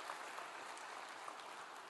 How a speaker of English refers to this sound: Come on, that's a good place to clap.